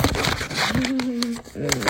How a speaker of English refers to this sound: She constantly edits her videos and yet felt the need to keep in the crumbling of the paper. Yes, I know. That's obnoxious.